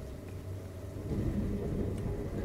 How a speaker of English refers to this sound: Maybe the thunder is like drowning you out.